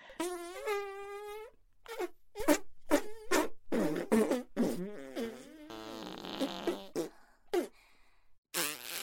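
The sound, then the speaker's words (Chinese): A string of loud farting noises: one long wavering buzz, then a rapid series of short, sputtering blasts and a hissy stretch, with no talking. “对，继续，继续放屁吧，我也会放屁的，你可要好好的。”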